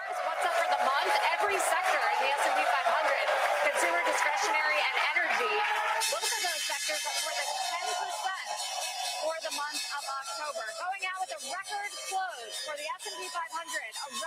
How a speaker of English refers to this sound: We do have the bell coming up though, so let's listen to the bell.